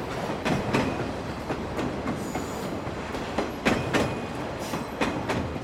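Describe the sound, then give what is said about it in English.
A China-Europe Railway Express freight train from Jiangxi province in eastern China, bound for Europe via Manzhouli and the Trans-Siberian Railway, rolls steadily along the rails, its wheels clattering in an irregular clickety-clack rhythm over a continuous rumbling roar, without any voices. “This is one of the common routes of the China-Europe Railway Express, a giant cargo network spanning more than 50 cities in China and reaching over 160 cities from 23 countries in the world.”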